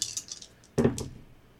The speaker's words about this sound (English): All right, so I'm rolling 3 dice because I'm being assisted.